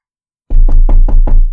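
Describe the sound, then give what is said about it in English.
Someone raps on a hotel room door at 1:30 a.m., five times in quick, even succession, the heavy knocks loud after a moment of silence, with no voices. “It was 1:30 a.m. and there was somebody at my door.”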